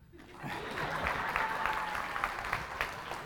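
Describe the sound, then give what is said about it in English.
An audience claps steadily, a dense wash of many hands with sharper individual claps poking through, building quickly and holding at a moderate level for a few seconds. “This is where you clap.”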